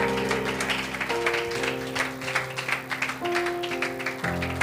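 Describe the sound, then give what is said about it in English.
An audience at an evening church service claps steadily in praise for a preacher, a dense wash of many hands applauding together over sustained organ chords that shift a few times; no one speaks. “Can we just give him a hand clap of praise this evening?”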